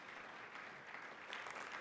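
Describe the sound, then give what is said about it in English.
Steady applause from a choir, many hands clapping at once in a dense, continuous patter that swells slightly toward the end, with no voices standing out. “Can we get that choir hand clap this morning?”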